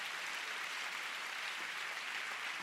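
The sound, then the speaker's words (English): An audience at a church service claps for God in a dense, steady wash of applause that holds at an even level throughout, with no single claps standing out and no voices. “Come on, give God a big clap.”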